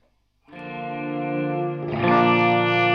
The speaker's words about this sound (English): It's got just a bunch of different reverb algorithms. Yeah. It's also hooked up to the expression pedal, so you can control whatever parameters you want. Right now I've got it on a swell mode.